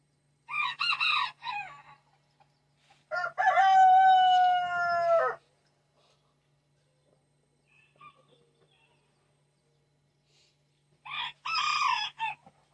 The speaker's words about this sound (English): I think that'd be hilarious if I'm like talking to somebody on the phone and there's like chickens crawling in the background. Lots of chickens and ducks quacking.